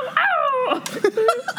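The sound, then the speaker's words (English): A person imitates a dog's howl, a short, fairly loud wavering cry that slides downward in pitch, then breaks into a few choppy yelping sounds. “I tried to start a howl, it didn't work.”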